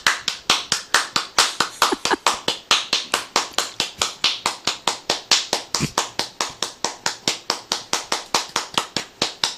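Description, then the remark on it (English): Steady, brisk hand clapping, about four claps per second, keeping an even rhythm for nearly ten seconds. The claps are sharp and fairly loud, with no one talking. “I was enjoying your clapping.”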